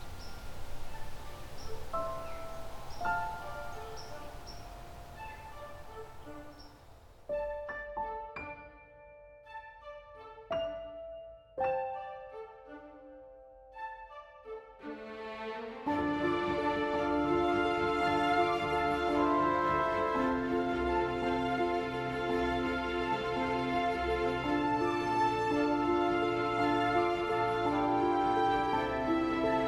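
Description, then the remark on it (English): A white-throated sparrow gives a few sharp, isolated call notes, brief high chips spaced irregularly, over a steady outdoor background that swells louder later on. No one speaks. “A very talkative, I think that's black, or sorry, that's a white-throated sparrow, that call.”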